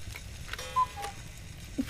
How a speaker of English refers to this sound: What is that? Oh, that? That would be our Christmas cuckoo clock. Care to see it? It's quite special.